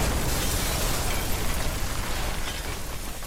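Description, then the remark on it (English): A shuttle explodes in the sky: a sustained, roaring explosion rumbles loudly and steadily for a few seconds, dense crackling noise spread across the whole range with heavy low-end rumble and no voices. “With a massive explosion in the sky, and to Tracta's surprise, the shuttle explodes, killing all those on board.”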